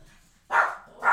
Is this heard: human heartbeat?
no